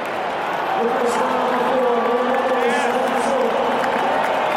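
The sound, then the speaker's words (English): A stadium crowd of Italy supporters cheers and roars as Leonardo Spinazzola comes on as a substitute in the 60th minute of a football match between Italy and Argentina, a steady, loud swell of many voices keeping up a dense unbroken wall of noise for several seconds with no single speaker standing out. “Listen to this crowd as Spinazzola comes on.”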